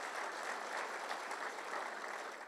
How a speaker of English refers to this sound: Come on, give God a mighty clap of praise.